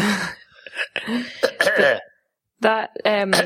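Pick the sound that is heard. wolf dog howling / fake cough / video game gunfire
fake cough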